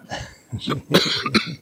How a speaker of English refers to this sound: Was that intentional? The cough? No.